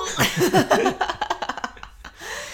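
A dog named Butters hacks and coughs in a quick run of harsh, rasping bursts, starting with a wheezy, strained spasm and trailing off into shorter choppy huffs before a final breathy wheeze.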